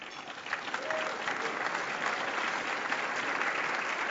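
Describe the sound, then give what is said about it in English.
An audience applauds Dr. Eric Hoskins, former Ontario minister and MPP for St. Paul's in Toronto, a dense wash of many hands clapping at an even, fairly loud level that holds from start to finish without letting up. “I'll have to do another of my requests to please hold your applause because I'm sure you'd rather hear from them than me.”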